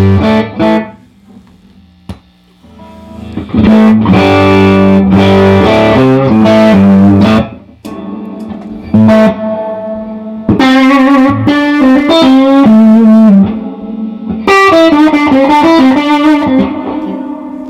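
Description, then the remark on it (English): An electric guitar plays through an amp, strummed chords and ringing single notes washed in spacious reverb, with lingering tails between phrases and no voices present. “My reverb is a whole different approach at reverb.”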